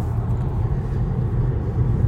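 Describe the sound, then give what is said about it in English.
Steady, deep rumble of a car's interior while being driven to a football game, a continuous low engine and road drone that stays even and fairly loud throughout, with no voices. “I'm in the car with James Gocroft, who's been kind enough to give me a lift to the game.”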